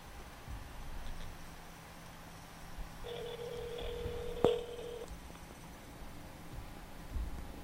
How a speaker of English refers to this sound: All right, let's dial him up. Speaker? It's ringing.